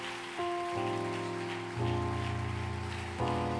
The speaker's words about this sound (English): That hand clap belongs to Jesus today. Isn't he wonderful?